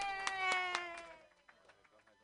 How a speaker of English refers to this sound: Clap your hands in a wild slappy-like motion